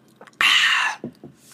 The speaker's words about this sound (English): I'm gonna take a sip of water briefly.